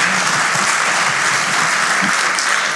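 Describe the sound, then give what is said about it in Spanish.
Loud audience applause, a dense, steady wash of many hands clapping without pause for the whole stretch, with a faint murmur of voices underneath. “Si usted lo cree, dar un aplauso fuerte, Señor.”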